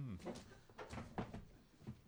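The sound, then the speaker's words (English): A chair shifts and scrapes over loose paper scripts, giving several short crinkling, rustling bursts over about two seconds, with a faint low murmur underneath. “Sorry, I just moved my chair. I moved my chair onto all the scripts, and I was trying to hop around on my fat ass without making a noise.”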